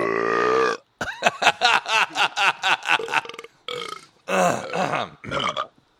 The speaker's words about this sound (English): Listening to these burps makes me want to burp. I didn't even realize I was burping. You are, dude. You got a problem. You're even burping while you're talking, like through your words.